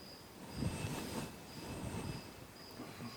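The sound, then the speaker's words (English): Crickets chirp in thin, high-pitched trills that come in on-and-off bursts over a low, steady rumble. The trills stay faint and even, and no one speaks. “What else is happening? Crickets. This is also true.”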